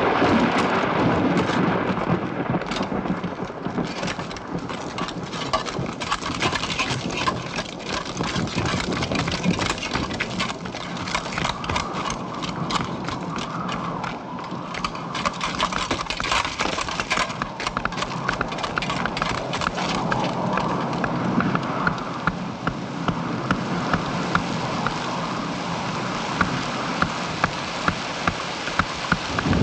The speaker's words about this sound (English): these like canvas tents, and they're just all just banging away on those stakes, and he really just lingers on that. The sound of these men just focusing on their work of trying to basically batten down the hatches for this storm.